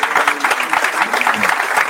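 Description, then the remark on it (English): An audience claps steadily and loudly to welcome four guests, a dense, crackling wash of many hands with faint voices murmuring underneath. “Let's give it a big round of applause then for the 4 guys that you want to hear from.”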